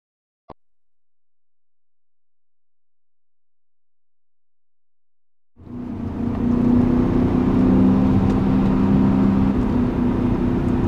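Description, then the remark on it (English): After a single click and several seconds of silence, a BMW M5 sedan's engine roars in loudly as it accelerates and holds a deep, steady droning note as it drives on the mountain roads of the Hudson Valley, with no voices. “That engine, the engine note alone, I could fall asleep to this engine note.”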